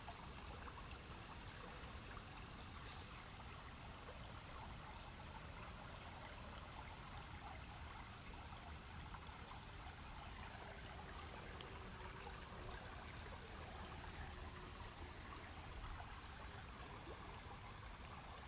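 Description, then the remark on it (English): A river surrounded by trees flows steadily, its constant rushing and gurgling water noise continuing unbroken throughout, with no voices present. “We're breathing in the beautiful, crisp, fresh air next to this river surrounded by trees.”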